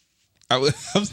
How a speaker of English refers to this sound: I knew that was going to start happening. I felt that. Really? I felt the hiccups starting to come.